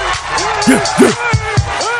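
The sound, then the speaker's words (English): A man screams and yells in the background over a murmuring crowd, his voice rising and falling in several strained, high-pitched bursts across the two seconds. “Hear that guy screaming in the background?”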